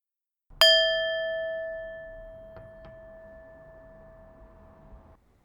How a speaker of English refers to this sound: Now, from this position, I'm going to have a little gong timer here, and we're just going to sit for 5 minutes and observe our breath and observe our bodies.